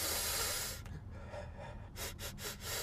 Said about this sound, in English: What does he smell like, I wonder? Why don't you give him a sniff and find out?